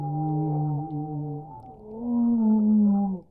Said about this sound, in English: Scientists have uncovered one of the secrets of the underwater world, how humpback whales sing their haunting songs.